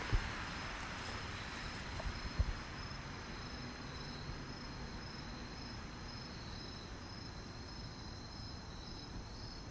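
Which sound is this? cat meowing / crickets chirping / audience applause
crickets chirping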